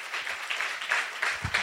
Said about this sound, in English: Come on, let's give the Lord a good clap offering. Amen.